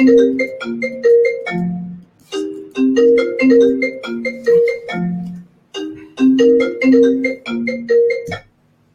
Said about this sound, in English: But to be fair, it is tradition for the phone to ring.